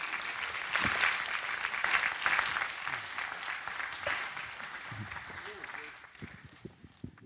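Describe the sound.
An audience claps steadily, a dense crackle of many hands that swells early, holds for several seconds, then thins and fades toward the end, with faint murmuring voices underneath.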